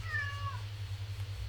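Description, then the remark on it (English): A single drawn-out meow from a pet cat, bending downward in pitch and fading after about half a second, over a steady low electrical hum. No one speaks. “Can you hear the cat? The cat's losing his mind.”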